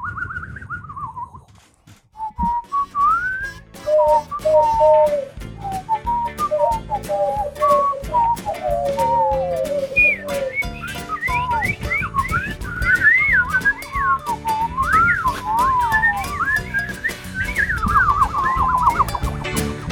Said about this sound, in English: Can we do a little whistle on the way out?